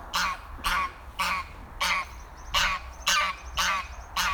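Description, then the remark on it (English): A goose honks repeatedly in a steady series of about eight loud, harsh calls, fairly close by, with faint outdoor background noise and no talking. “You can probably hear the goose now, as I've got a bit closer.”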